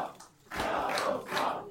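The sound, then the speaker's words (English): A large crowd at a party's election-results event chants "We will win" together in loud, unison bursts, voices rising and falling in a rhythmic pattern after a brief lull, as party leader Jarosław Kaczyński takes the stage. “There were chants of "We will win" in the crowd.”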